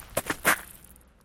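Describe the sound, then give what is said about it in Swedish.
Three quick, crunching footsteps on a gravel path, fairly quiet, with the third step heaviest, followed by a brief fading hiss of silence. “Jag mindes ljudet av fotsteg bakom mig på grusgången.”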